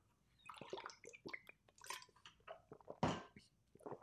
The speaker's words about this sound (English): Time for some more water.